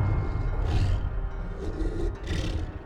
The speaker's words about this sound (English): Something was snoring.